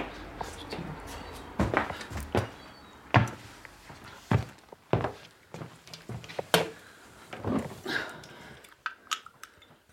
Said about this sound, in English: So I'm just getting my Diet Cokes out of the fridge.